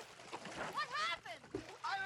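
Watery bubbling and splashing as bubbles come up from under the water, fairly loud, with warbling, gurgly tones rising and falling across a couple of seconds and a brief burst of sloshing near the end.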